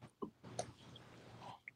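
Quiet chewing with a few soft wet bites and mouth clicks, irregular and low in level, with no talking.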